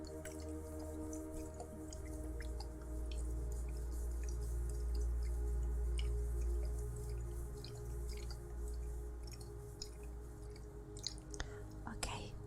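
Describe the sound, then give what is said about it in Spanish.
A small amount of water is poured or drips, heard as scattered small droplet clicks over a steady low hum, fairly quiet, with soft whispering in the background and a few sharper drips near the end. “Aunque ahora que lo pienso, he visto que te has esforzado mucho, así que creo que te daré solo un poco de agua.”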